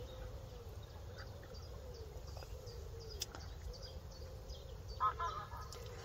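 Geese call faintly as they fly past a fishing spot, going by beyond the angler's rod tips, with a couple of honks standing out near the end, over a steady low outdoor rumble.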